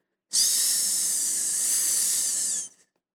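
A blood pressure cuff deflating in a hospital room gives a steady, bright hiss of air that runs loud and even for over two seconds before cutting off abruptly. No voices.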